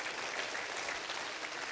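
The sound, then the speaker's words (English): A crowd claps steadily, a dense wash of many hands applauding together at an even, fairly loud level with no pauses and no voices standing out. “Would somebody clap your hand and say, I'm happy I'm a part of this thing today.”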